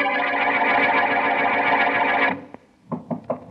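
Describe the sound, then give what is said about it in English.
A dense, droning passage cuts off abruptly, followed by a short click and then a few quick creaking, knocking sounds of a door being opened. No one speaks. “Oh, that door.”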